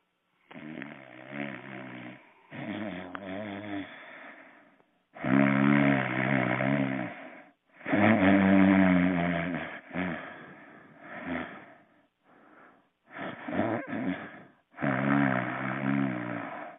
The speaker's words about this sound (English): if you've been hearing a sound in the background, it's him snoring. Here, I'm going to take the phone close to him.